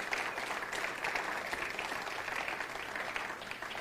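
A steady round of applause welcoming a church's children's director to the stage, many hands clapping in a dense, continuous patter that holds at an even loudness for several seconds without a break.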